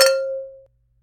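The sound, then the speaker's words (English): Wine glasses clink together once in a toast during a tasting of two wines, a bright strike followed by a clear, mid-pitched ring that fades over about half a second, with no voices. “Well, I'm really excited to get into both of our wines, so let's cheers and smell and give it a go.”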